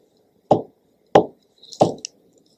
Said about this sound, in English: She knocked on their door.